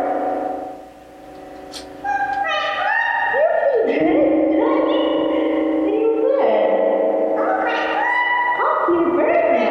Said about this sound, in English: That's a pretty good spring reverb.